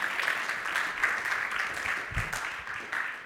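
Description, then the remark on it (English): A church audience at Villas Grace Church applauds steadily, many hands clapping in a dense, continuous wash of sound with no voices, holding at an even, moderate loudness throughout. “We deserve to give Joe another round of applause on that.”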